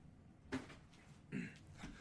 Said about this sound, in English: Sorry, I had to shut the door. Felt there was going to be some noise.